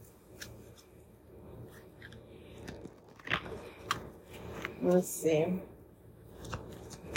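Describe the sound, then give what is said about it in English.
A deck of oracle cards is shuffled, with soft riffling and papery flicks that build into a couple of louder bursts, while a person speaks briefly in a low voice. “Let me shuffle one more time.”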